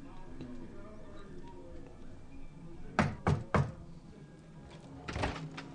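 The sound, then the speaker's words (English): Three firm knocks on a wooden door in quick succession, followed by a softer double rap a moment later, with faint speech murmuring in the background. “Basically, she is the last door on the left, and you'll have to knock on the door, and she will try to slam it in your face, and your goal is to not let it slam in your face.”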